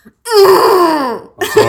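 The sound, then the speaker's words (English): A person imitates a Canadian bison, letting out one loud, drawn-out groaning grunt that sinks in pitch over about a second, followed by a brief burst of voice. “you would give us a Canadian bison sound.”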